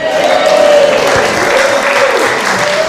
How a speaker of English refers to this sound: Give us a clap. Well done. Well done.